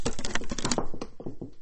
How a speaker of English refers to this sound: Wait, let me knock on the wall.